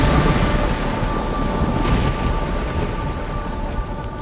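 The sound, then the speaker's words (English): Heavy rain pours steadily and loudly at an airfield, with a low rumble of thunder rolling underneath throughout, as a pilot ties down a just-landed aircraft in the downpour; no voices are heard. “The aerodrome reporting office helped me tie down in the downpour with thunder and lightning.”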